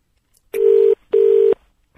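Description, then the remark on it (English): Two loud, steady telephone call tones sound in quick succession, each lasting under half a second with a short gap between, clear with no talking, as a call is placed back to a woman who put the phone down. “I'll call her back.”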